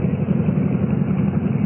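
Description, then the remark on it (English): A motorcycle engine idles with a steady, low, throbbing rumble that holds even for the whole stretch, with no voices over it. The motorcycle has pulled up on a road at a rise over an old abandoned single-track railroad. “Oh, I could have run you down with my bike just now.”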